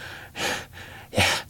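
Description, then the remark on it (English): Two ragged, labored gasps from a dying gangster lying down, separated by a short pause, the second one harsher and louder, with no talking around them. “"He's dead already," the Red Panda said bluntly, turning back to the gangster where he lay gasping.”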